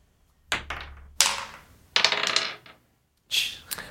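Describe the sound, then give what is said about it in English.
Dice clatter and tumble across a hard surface in four quick bursts of sharp, bright clicking as an investigation check is rolled, each rattling briefly before settling into silence. “And roll an investigation check.”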